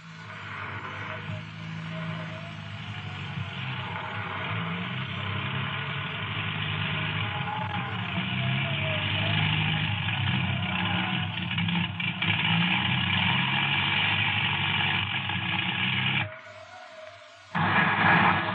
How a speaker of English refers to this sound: Plane approaching, sir. Plane circling the field.